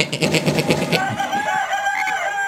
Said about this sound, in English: Cock-a-doodle.